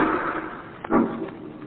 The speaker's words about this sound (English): Margot and Lamont are in the home of the wealthy actor Hugo Zara, owner of the fabulous Ruby of Karavahl, when suddenly from upstairs they hear the sound of a gunshot.